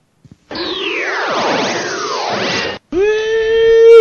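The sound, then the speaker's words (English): A short electronic stinger introducing a news segment: two quick clicks, then loud swooping, descending synth sweeps layered over each other, cutting to a steady buzzy held chord that swells at the end. No voices. “All right, play that news music.”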